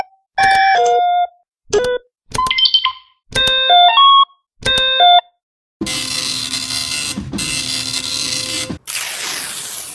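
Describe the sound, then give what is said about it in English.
An old, rarely used computer being switched off and on to power it back up: five short, bright electronic beeps at shifting pitches, then a loud, steady whirring rush like a cooling fan spinning up. No one speaks. “Flip it on and off a couple times, see if it'll power back on.”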